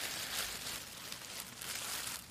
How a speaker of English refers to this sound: Okay, so here I have some of this large one. I put into a plastic bag.